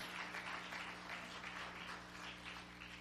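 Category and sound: crowd, audience clapping hands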